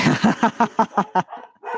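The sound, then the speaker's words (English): A dog barks at night in a quick run of about seven sharp, evenly spaced yaps, trailing off into a softer whining sound. “Well, that's a good place to wrap up, considering I have lots of barking tonight.”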